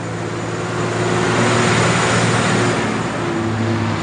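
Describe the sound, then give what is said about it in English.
A heavy semi-trailer truck engine labors up a long, constant mountain climb with 21 hairpins, a loud, steady low drone with humming harmonics and a broad roar of road noise throughout, no voices. “There's like semi-trailer going up that hill.”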